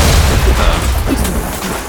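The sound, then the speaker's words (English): A double-barrel shotgun, a classic hunting gun, blasts through a door: a loud, heavy boom with a dense, rumbling low-end roar and gritty noise that carries on for about two seconds, with no voices. “Okay, so you've discharged it and the sort of the middle of the door goes and the bottom panel sort of”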